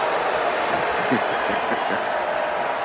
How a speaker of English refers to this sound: Booing from Steeler fans.